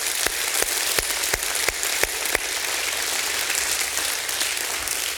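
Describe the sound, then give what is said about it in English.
A church audience gives God a hand clap of praise in a dense, steady wash of hand claps, with a few sharper, louder claps landing in a regular beat during the first two seconds. No one speaks. “If you believe that, give God a hand clap of praise.”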